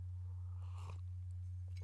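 A single soft slurping sip of coffee, brief and quiet, over a steady low electrical hum, with a few faint mouth clicks afterward and no talking.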